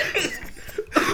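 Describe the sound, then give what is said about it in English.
A short burst of harsh coughing, a coughing attack, a few rough bursts in quick succession with a brief lull between them, no speech. “Why, having a cough attack?”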